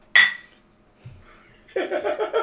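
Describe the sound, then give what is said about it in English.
A single bright clink of glasses in a toast rings out and fades quickly, followed by a soft thump, a short pause and then voices chattering. “Best friends. Cheers.”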